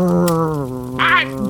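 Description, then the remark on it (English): A cur dog growls in one continuous low, buzzing rumble that briefly sharpens into a harsher snarl near the end. No one speaks. “Dang it, Clay, call off your cur dog.”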